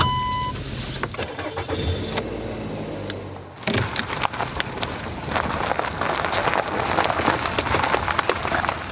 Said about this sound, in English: Every time I drive up the steep and curvy Arkansas road into the Ozark Mountains, I have two simultaneous thoughts.